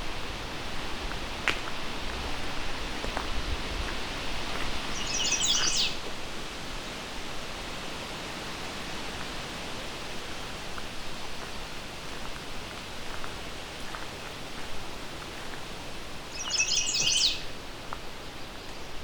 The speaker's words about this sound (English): Got some American red starts here too.